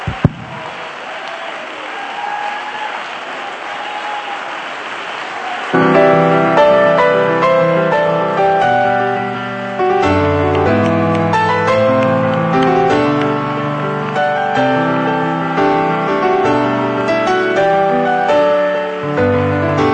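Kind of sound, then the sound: crowd, audience clapping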